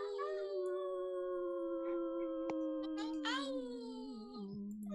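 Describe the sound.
Human voices imitate a wolf howl, one long sustained cry slowly sliding downward in pitch, loud, with a few other voices briefly joining in partway through.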